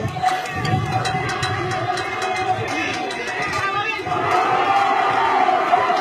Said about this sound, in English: Man, the crowd noise is just insane. We got Waco Robinson and Huffman behind us in a regional final. And you got this big round four matchup.